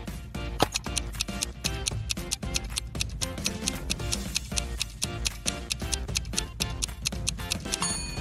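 A countdown timer for a brain-teaser puzzle ticks steadily and quickly, about three or four sharp clicks per second, over a continuous droning musical bed with no talking.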